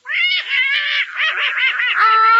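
Herman, a pet duck, quacks in a rapid, unbroken run of nasal, warbling calls lasting a couple of seconds, loud and steady with no talking over it.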